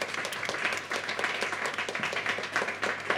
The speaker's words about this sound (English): All right, that's the end of that round, ladies and gentlemen. Round of applause for the three.